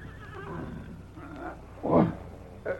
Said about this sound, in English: The fire had been put out, and both men were asleep, when there came a distant whinny.